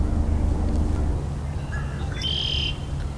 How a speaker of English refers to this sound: Yeah, this got a few song sparrows singing here.